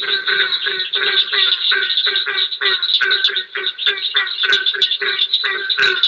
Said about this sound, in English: So it wasn't the cricket or whatever that was in the foreground, but in the background, it sounds kind of like a barking dog. And that's because it was the barking tree frog.